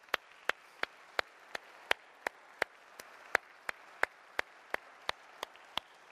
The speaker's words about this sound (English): Come on, you clap. You clap when you see a team perform well. When you see what the Son of God has done for you, there's nothing like it.